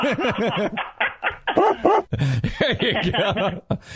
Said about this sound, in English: See, there's our dog. We have our studio dog.